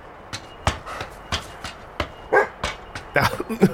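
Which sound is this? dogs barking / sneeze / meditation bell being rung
dogs barking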